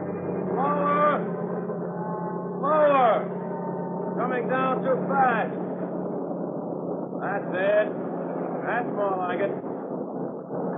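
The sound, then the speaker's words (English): A helicopter hovers overhead above a heavily bobbing yacht while a person is lowered from it toward the deck, its heavy engine roar and rotor rumble droning steadily throughout while voices call out faintly over the noise. “Swinging around under that copter, hoping I'd hit the deck of the boat below, was no fun.”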